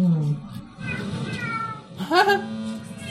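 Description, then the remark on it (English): A cat named Baxter meows, a drawn-out cry followed by a sharper rising meow, fairly loud over a steady low background hum. “Man, I wonder what it's like being a cat.”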